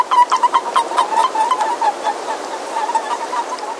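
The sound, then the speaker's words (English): A chorus of breeding male boreal toads in Glacier National Park calls softly to define and defend their turf, giving soft, rapid peeping chirps in quick overlapping series, steady and mid-pitched, over a constant rushing, water-like background hiss. “Crowds of breeding boreal males calling softly to define and defend their turf.”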